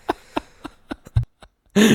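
A run of short, breathy cough-like bursts comes at a steady rhythm, then a pause, and finally a louder, harsh, rasping cough at the end.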